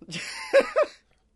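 A short, rough cough breaking into two quick voiced hacks near the end, then silence. No one speaks.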